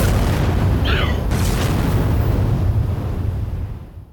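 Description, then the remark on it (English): Both engines of a U.S. Air Force reconnaissance jet explode in deep, concussive booms that roll together into a heavy, continuous, loud rumble, with a brief high crackle early on before the roar slowly fades away. “Concussive booms shook the sky as both engines exploded into swirling balls of orange and black flame.”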